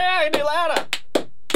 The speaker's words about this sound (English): He's clapping loudly. Wow, he is clapping loudly. That is very loud. Loud clap.